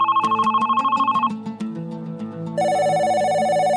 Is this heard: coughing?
no